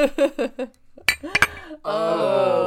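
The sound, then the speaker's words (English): Drinking glasses clink together in a toast, two or three bright, ringing taps picked up by the microphone, with voices before and a drawn-out cheerful exclamation right after. “That clink's going to sound so good from the microphone.”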